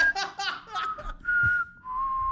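A person whistles a few sustained, slightly wavering notes, with brief giggly, breathy sounds mixed in at the start before the whistle settles into longer held tones.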